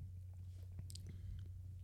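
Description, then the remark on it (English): Quiet chewing of small crunchy almond chunks from a canned drink, a few soft bites and crunches scattered irregularly over a steady low hum, with no one speaking. “Chew it up and see if it's nutty.”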